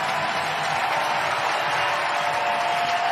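A stadium crowd of fans in San Francisco gives an ovation for Mad Bum as he departs, a loud, steady wash of cheering and applause that holds at an even level throughout, with no voices speaking over it.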